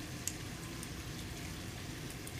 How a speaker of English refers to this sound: You add water. That's why I said don't do too much with this, because it's seasoned perfectly.